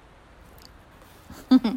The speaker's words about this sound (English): just knocked over this painting that I have in my office that's on a canvas. It just went and fell down.